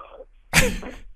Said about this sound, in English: Excuse me, I had to burp.